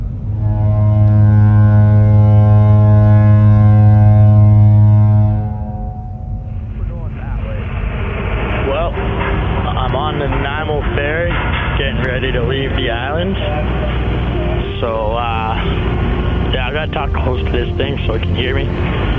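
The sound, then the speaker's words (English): A deep, loud ship horn blasts for several seconds, then a ferry deck's steady engine rumble and vehicle noise continue as cars are loaded, with people talking. “I'm just walking around the ferry. Car's getting loaded.”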